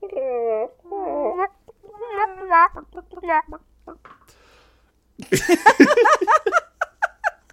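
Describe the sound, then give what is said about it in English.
Someone mimics a chicken, starting with warbling, rising clucks and then breaking into a rapid burst of choppy, squawky clucking mixed with giggles, fairly loud. “I'm going to do chicken noises.”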